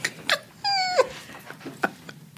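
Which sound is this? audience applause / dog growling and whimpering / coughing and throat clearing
dog growling and whimpering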